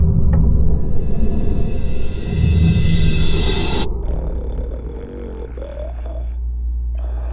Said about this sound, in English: What an instrument. A snore that would have served any sitcom roared through the little keyhole, and I could only guess it was the old codger himself.